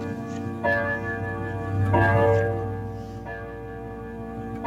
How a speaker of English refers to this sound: My grandfather had a clock. Your grandfather had a clock like that? It is a grandfather clock. Yes. Yes, there it is.